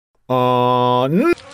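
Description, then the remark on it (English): A single loud, steady buzzing drone, likely a voice imitating biting mosquitoes, holds for about a second, then swoops upward in pitch and cuts off abruptly. “The mosquitoes are biting.”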